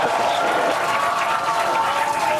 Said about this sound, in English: They're cheering. They got 10 seconds to lift off.